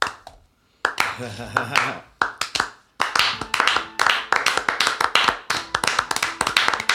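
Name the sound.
hands clapping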